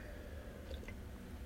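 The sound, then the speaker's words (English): A quiet sip of water, with soft wet mouth sounds and a faint swallow-like squish near the middle over low background hum. No one speaks. “Let me have a sip of water.”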